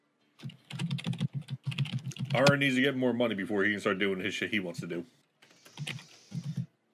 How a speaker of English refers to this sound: Everyone's just typing in the chat, shut up!